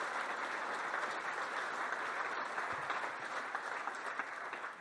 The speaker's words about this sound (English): a round of applause, everybody, by the way.